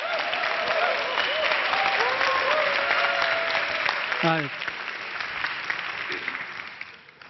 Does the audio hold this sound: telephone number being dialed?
no